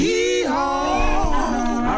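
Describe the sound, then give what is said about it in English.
A donkey bray sound effect for the Donkey of the Day radio segment, loud, a drawn-out, wavering honk with a shift in pitch partway through, lasting about two seconds with no talking over it. “Oh, now you are the donkey of the day.”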